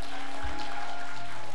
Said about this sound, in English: Congregation, let's go ahead and cheer for the people who made decisions for Jesus today.